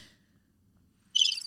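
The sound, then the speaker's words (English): A brief cricket-chirping sound effect: shrill, high-pitched chirping rises suddenly out of near silence, clear, then trails off after a fraction of a second with no one talking. “You know what's funny is that's the perfect sound effect you could have done because I truly had crickets.”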